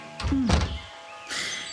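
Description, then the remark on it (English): A door is pushed shut with a soft, low thunk and a brief scrape of movement, followed by a quieter rustle of handling. “I'm just gonna shut this.”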